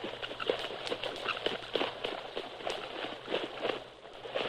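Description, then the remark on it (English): Several horses' hooves clip-clop steadily as they cross a ford of the Rio Grande into Mexico, a brisk irregular patter of strikes with splashy, wet edges, over a low steady hum. “Pull up. Rein your horse.”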